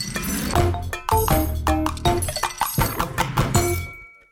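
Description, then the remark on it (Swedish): A knife coarsely chops crushed, peeled garlic cloves on a cutting board in quick, uneven strokes, each sharp tap ringing slightly, with the chopping stopping just before the end. “Och nu håller jag på att liksom hacka dem ganska grovt.”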